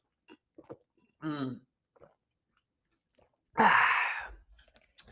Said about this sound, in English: Let me get a drink of water here before I throw up. Hold on. Oh, I can't find it. Hold on. I think it's in the, hold on. ASMR water drinking right here.